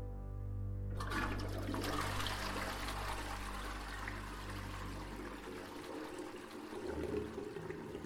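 A toilet flushes after a moment of low hum, releasing a loud rush of swirling water that churns steadily for several seconds before easing into a gurgling trickle, as a miscarried fetus is flushed away.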